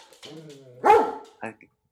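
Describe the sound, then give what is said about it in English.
A dog named Killer barks at the front door: a drawn-out, whining tone swells into one loud, harsh bark, followed a moment later by a shorter, quieter yelp. “God, listen to those paws.”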